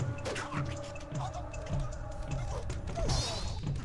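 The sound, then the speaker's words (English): A video game enemy death sound effect, from an enemy slashed with a knife who staggers clutching his neck as arterial blood sprays out, then keels over: a dense, continuous stretch of strained, groaning vocal noise layered over wet, splashing and thudding impacts, loud throughout for about four seconds. “But it did have one of the best death sequences in a game ever, which, of course, you've already heard, but let's hear it again.”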